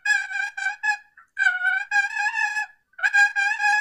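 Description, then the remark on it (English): Raspy, rolling turkey hen purrs from a wooden box call, played fairly loud in three bursts separated by brief pauses, the first broken into short choppy notes, the others long and trilling. “You can do some purrs,”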